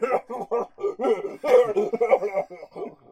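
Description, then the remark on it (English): A person coughs in a rapid, sputtering fit while drinking whiskey, a string of voiced, choking bursts that run together for a few seconds, fairly loud. “That's what I get for trying to cough and drink whiskey all at the same time.”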